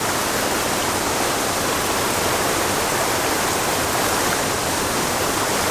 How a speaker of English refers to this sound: There were rapids, big rapids. I floated down and camped where I first heard the roar. It sounded like this.